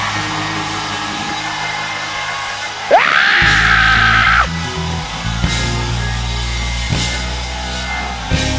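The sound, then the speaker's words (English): A large audience at a church sermon screams and yells in a loud, continuous roar, with one sustained, shrill cry rising above the din for a couple of seconds midway before the noise carries on. “When pressure is on my life, you don't get quiet. When things don't go your way, don't get quiet. Scream!”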